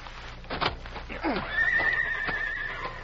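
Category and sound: animal, horses neighing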